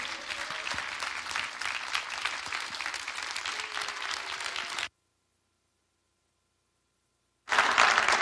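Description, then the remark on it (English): Sustained applause from a large church audience welcoming a preacher as he takes the stage. The clapping is dense and steady, cuts off abruptly into silence, then bursts back loudly for a moment at the end. No talking over it. “So you're clapping by faith.”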